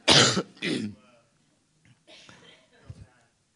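man coughing

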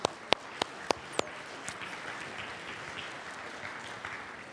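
audience applause

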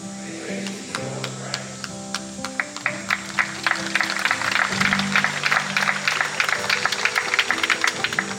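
audience applauding

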